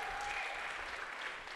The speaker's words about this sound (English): Can we give Alfonso a hand clap? I mean, I just love this guy.